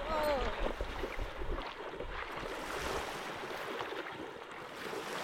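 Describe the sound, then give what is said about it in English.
Horses swimming and splashing through water on a horse tour, a steady churning and sloshing that fills the whole stretch, with a brief voice at the very start and some wind noise. “I mean, it's fair to say that if you take a horse for a swim, you're going to get wet.”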